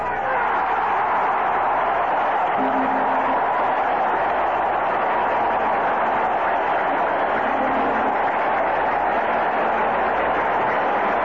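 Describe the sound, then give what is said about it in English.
A baseball stadium crowd gives Nolan Ryan a standing ovation after he strikes out the side for his 14th strikeout of the game, a loud, unbroken roar that holds steady for the whole stretch, with a few faint low tonal notes surfacing briefly beneath the din. “A standing ovation for the young man from Alvin, Texas, as he disappears into the Angels' dugout”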